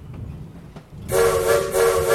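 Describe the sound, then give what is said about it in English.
After a second of low rumbling, a loud, shrill train whistle bursts in and sounds four short blasts in rapid succession, a signal to the crew of an obstruction ahead, piercing over the steady rail noise. “Four short whistles ring out in rapid succession, giving signal to the crew of some obstruction ahead.”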